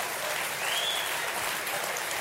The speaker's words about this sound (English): Oh, you're clapping, but I'm not done with you, sir.